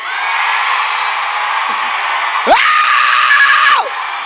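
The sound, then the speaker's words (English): A large church audience screams and shouts together in a loud, sustained roar, with one voice rising into a sharp yell partway through before the crowd noise drops off. “One time, I know y'all cool, I know y'all laid back, I know, but listen, one time, scream like you owe him.”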